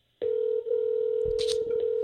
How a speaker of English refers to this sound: I'm calling her right now.